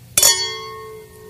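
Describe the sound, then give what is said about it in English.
A single bright clink of two wine glasses, a Dos Cabezas glass and a Callaghan glass, in a toast, followed by a clear, high ringing tone that sustains steadily and slowly fades over about a second, with a faint low hum beneath. “I forgot how long this glass holds that tone.”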